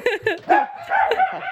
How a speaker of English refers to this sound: Oh, no. We have a dog emergency. The postman's here.